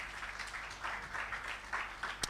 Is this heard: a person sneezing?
no